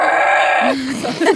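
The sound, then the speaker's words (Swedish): A person's voice imitates roaring like mooing cows, heard in a maternity ward during an attempt to turn a baby: one loud, drawn-out lowing call held steady, then sliding into a shorter, lower, rougher vocal sound. “Så här råmande kor.”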